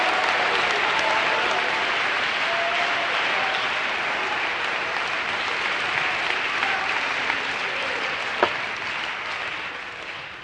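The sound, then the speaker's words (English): An audience claps steadily in a dense, sustained wash of applause that stays loud and even for about ten seconds, with one sharp louder clap standing out near the end. “Come on, the very least we can do is clap and pray.”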